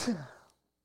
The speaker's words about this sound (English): Just sneezed.